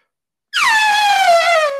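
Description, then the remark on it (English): A person imitates an elephant with a single loud, sustained trumpeting call, a harmonic-rich blare that starts abruptly after a brief silence and slowly slides down in pitch for over a second. “My elephant sound.”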